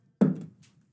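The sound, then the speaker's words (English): A die is tossed by hand onto a table for a strength check, landing with one solid thunk, then a few quick, light rattles as it settles. Moderately loud, with no talking. “Rolling with my hand.”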